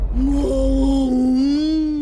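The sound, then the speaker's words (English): A voice imitates a whale call, mimicking the fish Dory trying to speak whale inside a whale, with one long, drawn-out moaning wail that stays low and steady, wavering slightly in pitch, loud and alone for about two seconds. “You know, I speak whale.”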